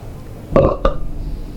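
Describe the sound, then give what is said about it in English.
A loud belch that erupts in two rough bursts, a longer guttural rumble followed by a shorter croak, against a quiet background. “Was that a belch?”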